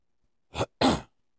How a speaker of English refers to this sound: Sorry about my cough. I am getting over a cold called COVID, but I don't have it anymore.